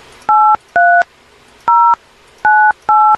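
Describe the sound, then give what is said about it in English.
Five crisp keypad beeps from a phone as someone enters their phone number, each a short dual-tone blip spaced unevenly as buttons are pressed, loud with no talking. “I just put my phone number in.”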